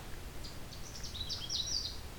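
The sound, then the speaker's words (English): A bird calls in a quick run of thin, high chirps and trills, fairly faint, from low-growing trees in amongst cedars, over a low outdoor rumble with no voices. “This bird's keeping to the low-growing trees right now, in amongst the cedars.”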